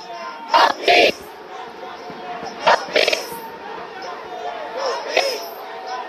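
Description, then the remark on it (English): A large protest crowd in a city square fills the space with a constant roar of many voices, broken by a few louder bursts of shouting or cheering that rise and fade over several seconds. “Hell of a crowd.”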